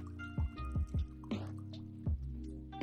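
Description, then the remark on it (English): An imported drink glugs out of a bottle into a glass, about five hollow, falling-pitch gulps over a steady liquid trickle, fairly loud, with no talking. “Perfect. Look at that. A gentleman's pour.”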